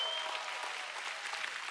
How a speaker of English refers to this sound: And we clap louder for Jesus than our favorite football team. Come on, let's go.